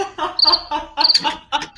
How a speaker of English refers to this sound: Oh, yeah, crickets.